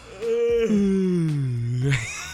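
A long, drawn-out human yawn with a groaning, voiced tone that slowly falls in pitch, fairly loud, lasting about two seconds before trailing off into a breathy exhale.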